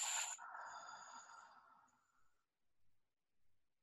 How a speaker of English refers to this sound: You're going to expand your rib cage. You're going to take that breath and put it all the way in your body. And then simply exhale.